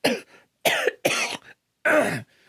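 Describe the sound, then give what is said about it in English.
Four harsh coughs in a quick, uneven series, each a loud burst with a short raspy tail, separated by brief silences and with no talking. “I think I'm developing a cough.”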